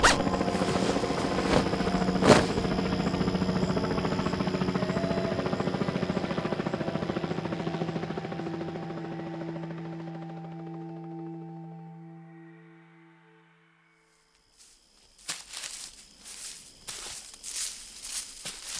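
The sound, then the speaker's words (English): A helicopter's rotor thumps loudly and steadily overhead, then gradually fades away, followed by a few scattered footstep-like knocks after a brief quiet. “There's that helicopter again.”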